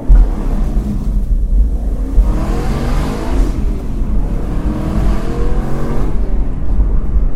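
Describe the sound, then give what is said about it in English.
A loud Aston Martin V8 engine revs hard with its exhaust baffles open, bypassing from about 4,000 rpm, the throaty roar climbing and falling in pitch through several surges, continuous with no talking. “The exhaust baffles seem to cut out and do the bypass from about 4,000 revs.”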